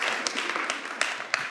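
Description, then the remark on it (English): A crowd applauds steadily for the outfits, many hands clapping in a dense, even wash with a few sharper claps standing out, sustained with no talking. “Can we actually have a round of applause for these outfits?”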